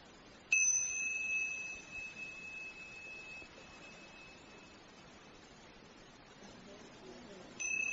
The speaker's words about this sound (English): And again, gently, when you hear the sound of the bell, open your eyes, softly, begin.